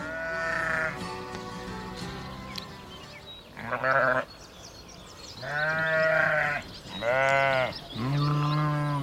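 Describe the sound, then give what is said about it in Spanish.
A flock of sheep climbing a mountainside bleat in overlapping, wavering calls, some long and quavering, coming in bursts with short gaps between, loud, with no talking. “Rebaños de ovejas suben por la falda del monte.”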